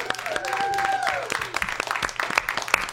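An audience claps for a musician after a performance, a dense patter of many hands with sharp individual claps standing out, while a few rising and falling whistles cut through over the first second.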